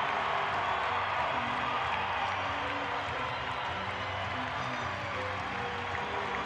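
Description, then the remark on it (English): A large arena crowd at a Utah Jazz basketball game roars and applauds steadily as it comes to its feet after a 116-108 win over the Timberwolves, a dense wash of clapping and cheering that holds at full volume throughout with no pauses. “Crowd comes to their feet.”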